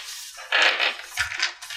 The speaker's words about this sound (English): May the party please roll initiative. Which dice is that? D6 plus your initiative modifier.